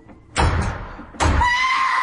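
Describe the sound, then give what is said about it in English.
Two loud, abrupt bursts of noise at the front door, each sharp at the start and lingering with a rough rattle; the second trails into a thin creaking whine. No one speaks. “All right, that's the front door.”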